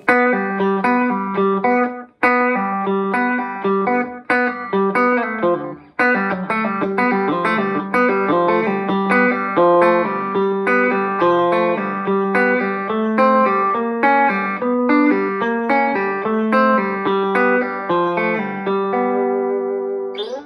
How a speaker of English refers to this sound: Okay, and that's, you're just going, but you're kind of hammering on, pulling off, and hitting an open G string. So here I'm going to do it real slowly.